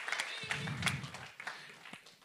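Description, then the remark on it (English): An audience applauds in a steady patter of overlapping claps, fairly soft, with a low murmur of crowd voices underneath, clapping for a woman as she comes down. “Would you give her a clap for me as she's going to come down?”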